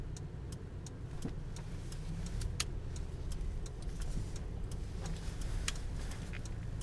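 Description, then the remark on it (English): A car engine hums steadily from inside the vehicle while a faint, regular ticking runs throughout, like a turn signal, as the car eases out into traffic after a truck driver lets it out. “Very nice truck driver just let me out.”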